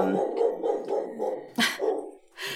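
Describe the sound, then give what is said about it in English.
Dogs bark in a quick, steady string of sharp yaps, fairly loud, with a couple of harsher, noisier barks near the end and no talking. “The dogs appreciate you all. The dogs appreciate you very much.”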